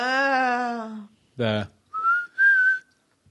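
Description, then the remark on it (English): A man whistles a short, lilting tune in a few rising and sliding phrases, clear, with a brief vocal sound between the whistled notes. “I do like that he was doing the same whistling thing as from Heroes and Villains with the Dark Dwarves”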